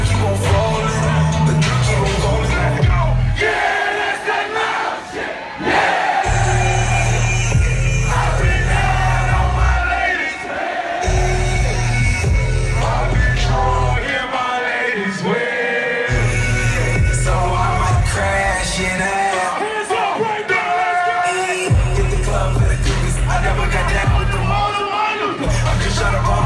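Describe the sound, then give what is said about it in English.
A loud, dense crowd at a concert in Chicago roars and yells continuously, with heavy thumping low-end bursts pulsing underneath like live music at a packed show. Shouts and whoops rise above the din throughout. “I have a video from this. And if I go back in and edit it, I can put that video up.”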